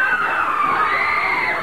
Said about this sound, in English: You're going to get cheers.